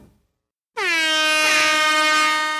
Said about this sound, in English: Well, there is the air horn of awesomeness, and that means it's time for us to get sanity shelves going.